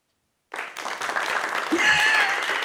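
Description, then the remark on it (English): After half a second of silence, an applause sound effect, one of three clapping effects on hand, begins abruptly: a thin, sparse patter of clapping, as if from about four unexcited people, holding at a steady, moderate level until the end, with a faint tonal whoop partway through. “I have three clapping noises.”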